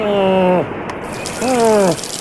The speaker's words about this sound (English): Hey, I can hear the sea.